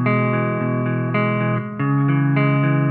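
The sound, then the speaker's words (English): A clean guitar tone is held and sustained by an effects pedal's momentary feature, latching onto the root note being played until the foot comes off the pedal; a thick droning note with shifting chords on top, steady and fairly loud with no talking. “latch onto like whatever root note you're playing with on a clean part or something. And it'll just continue”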